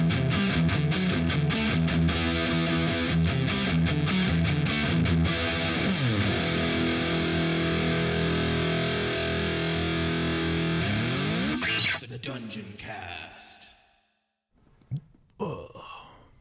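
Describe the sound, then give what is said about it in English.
A long, heavily distorted belch, deliberately forced as a bigger belch and sounding like a demon, low and gravelly, sustained for about twelve seconds with pitch sliding down and back up, then breaking into a few short, ragged bursts. “It was like a demon sound.”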